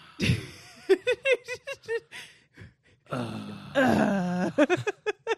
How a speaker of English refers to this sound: Will you stop yawning over there?